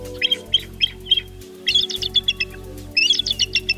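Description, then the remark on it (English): A bald eagle call: three quick bursts of high, piping chitter notes, each a rapid stuttering series, clear with no voices. “In the United States, the bald eagle soars.”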